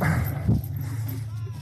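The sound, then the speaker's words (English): A puppy gives a couple of short yips and barks, followed by thin, high whimpering, all over a steady low background hum. “Now I get the puppy.”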